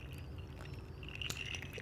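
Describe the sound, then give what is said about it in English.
Whiskey being poured on the rocks: a steady trickling splash with a thin, faintly ringing tone and a small clink midway, running continuously for the whole moment without any talking. “Why are you pouring in the computer?”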